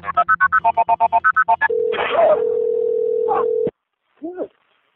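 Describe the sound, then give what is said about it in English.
A rapid string of telephone keypad tones dials a number for Lorenzo Wright's last phone call, on Monday, July 19th, followed by a steady ringing tone on the line with bursts of static, which cuts off abruptly before a brief voice answers. “Lorenzo, however, did make another phone call.”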